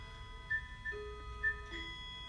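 A few short, high-pitched electronic beeps, heard on a Snap video playback, come at uneven intervals over a steady tonal hum and a low rumble, with no one speaking.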